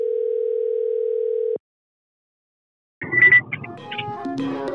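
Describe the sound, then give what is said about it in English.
A steady, loud telephone dial tone hums for about a second and a half as a call is placed from a mobile phone, then cuts off abruptly into silence before busy music starts up. “Let's call this guy.”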